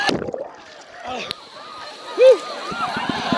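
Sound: waves crashing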